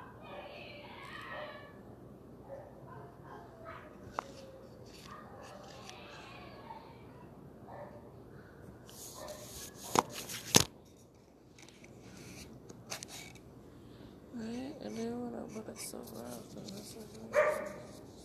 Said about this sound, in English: Lose your bark there, bud.